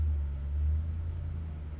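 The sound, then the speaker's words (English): Deep, muffled bass from a car outside booms as a steady low rumble through the walls, heavy in the low end with no voices present. “And someone's outside thumping bass. So if you hear that, super duper sorry. It's like a car with like a loud spoiler or whatever you call it.”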